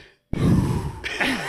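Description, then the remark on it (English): A long, breathy exhale of cigarette smoke blown right into a phone outside in the cold, starting abruptly with a rough, rumbling rush of air that thins into a softer, airy hiss. “Just breathing.”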